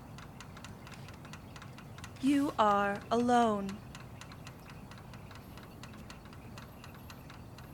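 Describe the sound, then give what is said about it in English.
A car engine ticks steadily as it cools in the empty parking lot of a highway rest area at 2 in the morning, a quick, fairly regular series of small metallic clicks running the whole time over a low background rumble. A voice briefly speaks midway through. “To your left, you hear the engine of your car cooling.”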